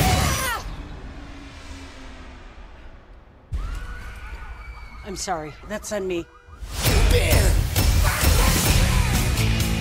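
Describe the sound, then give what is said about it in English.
A heavy whoosh builds into a loud, sustained crashing and smashing, like a bus being hurled and slamming down, noisy, with a person speaking briefly over it. “I can't hear you because I'm literally throwing a bus.”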